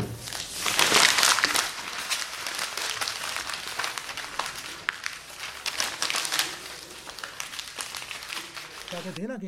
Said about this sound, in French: Une feuille froissée.